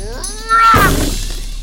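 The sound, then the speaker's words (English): A fist smashes through the bark of an elm tree hollowed out with a chisel, popping out the other side with one sudden, loud splintering crash that fades quickly. Just before it comes a short, whiny, meow-like cry. “Amos's fist crashed right through the tree and popped out the other side”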